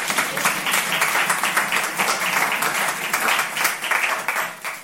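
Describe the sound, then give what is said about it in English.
A crowd applauds steadily for about five seconds, a dense, even wash of many hands clapping with no single claps standing out, holding a consistent level throughout. “Just a round of applause for them.”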